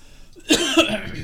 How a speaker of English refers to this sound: I cough and keel over on stream.